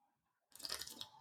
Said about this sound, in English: I'm just going to say that your little slurpy sip there, that was some ASMR shit going on right there. Can you do that again?